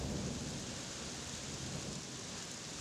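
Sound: rain falling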